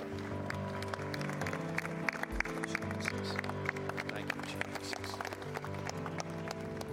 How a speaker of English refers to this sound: Thank you, Jesus. Come on, give him a hand clap of praise, church.